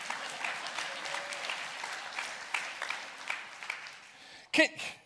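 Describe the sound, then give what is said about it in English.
An audience claps steadily, a dense patter of many hands filling the whole stretch, with a couple of sharper, louder bursts near the end. “Now, if y'all gonna clap, clap.”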